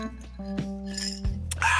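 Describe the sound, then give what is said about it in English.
Glass clinks a few times as a glass of Grey Goose with cranberry is poured, topped with a slice of lemon and a splash of lemon juice. Sharp, bright taps sound over a steady low hum, ending in a brighter splashing pour near the end. “I myself have poured a glass of Grey Goose with cranberry, topped off with a slice of lemon and a splash of lemon juice.”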